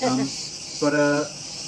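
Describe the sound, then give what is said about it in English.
Cicadas drone steadily in the background, a continuous high, shimmering buzz that never lets up, while two brief bursts of a person's voice sound over it. “Excuse the cicadas in the background.”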